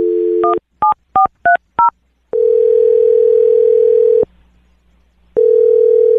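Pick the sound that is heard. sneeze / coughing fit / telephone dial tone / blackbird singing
telephone dial tone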